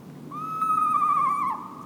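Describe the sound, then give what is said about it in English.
An eastern screech owl gives one drawn-out, eerie call lasting over a second, holding a steady pitch before quavering and dipping at the end, heard clearly over faint background hiss. “The spine-tingling call of an eastern screech owl is a case in point.”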